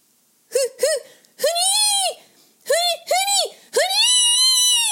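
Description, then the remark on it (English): A voice lets out playful squealing screams while splashing about in the waters of a bay, in a repeated pattern: two quick yelps, then a long drawn-out shriek, twice over. The screams are loud, with no splashing audible. “Screamed Khawler.”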